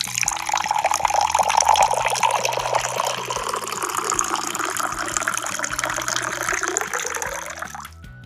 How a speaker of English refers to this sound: Water pouring into a cup.